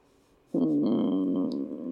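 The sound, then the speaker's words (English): A person voices a low, throaty animal growl: one steady, rumbling sound that starts abruptly after a brief quiet moment and holds for over a second at a fairly strong level. “It's just a low growl, but I stop moving.”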